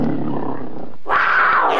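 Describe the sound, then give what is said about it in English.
A big cat roars loudly and up close, a low rumbling growl for about a second that breaks into a harsher, higher-pitched snarling roar, with no one talking. “That's a tiger. Red Cougar. Yeah, that's a Red Cougar.”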